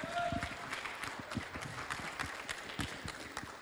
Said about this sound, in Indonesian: Beri tepuk tangan bagi Tuhan yang lebih luar biasa lagi.